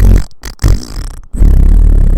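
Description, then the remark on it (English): A loud, buzzy fart noise, low and rumbling, sputtering in three bursts with brief breaks and ending in a long blat. No one speaks. “Sorry, so here's a free fart noise.”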